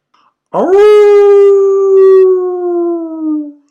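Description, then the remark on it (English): A single long, loud howl from one of the many large dogs kept at the Chateau d'Azay rises sharply, then holds a steady mournful tone for about three seconds before fading, with no talking around it. “Listen, what was that? Only the dogs, monsieur. They keep many large dogs at the Chateau d'Azay.”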